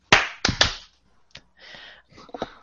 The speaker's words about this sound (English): That's enough silence. Let's do them 1, 2, 3, clap. Everybody ready?